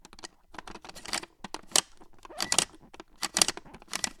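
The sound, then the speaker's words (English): Plastic toy gears inside the chest of a 16-inch-tall 1992 Playskool Big Frank Frankenstein's monster toy being spun, giving a quick, uneven run of dry clicks and ratcheting rattles in bursts that speed up and slow down over a few seconds, with no voices. “And when you open up his chest, there's a bunch of gears. I'll spin the gears for you.”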